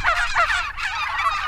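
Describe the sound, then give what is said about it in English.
Loud, dense gobbling from a flock of excited free-range turkeys in a field, overlapping rapid burbling calls filling the whole moment with no pauses, agitated. “And this is what it sounds like when they get excited.”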